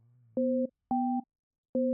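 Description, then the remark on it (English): Three distinct electronic beeps from a phone keypad, each a short steady dual-pitched tone separated by uneven pauses, the middle one pitched differently, with a faint low hum before the first. “Hopefully no one's recording these tones or I'd be fucked.”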